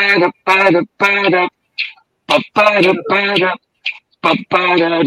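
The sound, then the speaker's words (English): A single voice hums the melody of a song in the key of G in short, rhythmic phrases, each sustained tone separated by brief pauses and a few breathy sounds, with no accompaniment. “It goes like this.”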